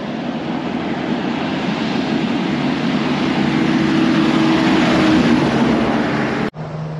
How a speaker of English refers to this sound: Guess what? It looks like a fire truck is trying to follow that car. Here it comes.